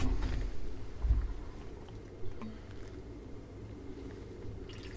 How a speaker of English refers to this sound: Or you could pour it into this decanter.